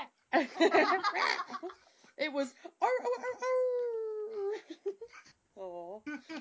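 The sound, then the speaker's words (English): A person's voice imitates a small dog, making several high, drawn-out whimpering whines, with a brief bit of talking at the start. “It actually was closer to a little doggy.”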